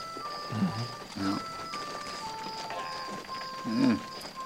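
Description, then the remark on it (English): Spotted horses gallop around a lot, their hooves making a few scattered, muffled thuds over a steady background hum, with faint voice-like sounds mixed in. “Them spotted varmints is racing around that lot like they was minnows in a pond.”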